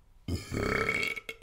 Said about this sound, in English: Are we trying to get me to do like a 7-second burp?